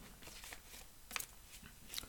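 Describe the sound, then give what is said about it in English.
Tarot cards being shuffled: a quiet run of soft, papery rustles and crisp riffling bursts, uneven in rhythm, with no one speaking. “Shuffle.”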